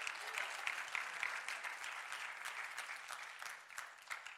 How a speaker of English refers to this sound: Come on, give the Lord a great clap offering.